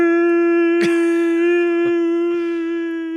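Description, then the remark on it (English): A sound effect with a heavy, echoing reverb, built on a steady buzzy tone held for about three seconds, broken by three sharp thumps at uneven intervals. No one speaks. “There was like a mountain range echo on that one.”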